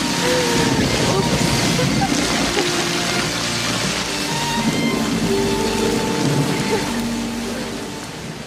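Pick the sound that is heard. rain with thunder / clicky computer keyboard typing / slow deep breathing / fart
rain with thunder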